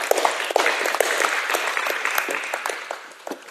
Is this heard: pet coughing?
no